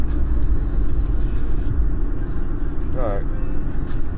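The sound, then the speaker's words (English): Steady low road rumble from inside a moving car in traffic pulling into Portland at 4:12, with engine and tire noise filling the cabin continuously and a brief higher whine or squeak near the end. “Unless you want to see some really cool cars. Why not? It's traffic.”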